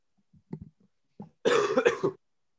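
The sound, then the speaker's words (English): A few soft throat noises lead into a loud, harsh burst of coughing, several rapid hacks in a row, with no talking. “Sorry, I had to cough.”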